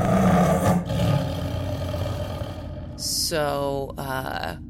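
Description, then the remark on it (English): A person gives a loud, growling roar in imitation of a tiger, starting with a harsh burst and ending in two rising, strained vocal bursts. “Okay, I'm a tiger. Gosh, I don't have a name, but what I like to be called.”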